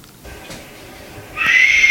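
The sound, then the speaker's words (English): A wild cat, a mountain lion or bobcat, lets out a loud, high-pitched chirping call that starts suddenly after a quiet, rustling stretch and holds steady until the end. “But these guys, they heard either a mountain lion or a bobcat, and this damn thing was chirping now.”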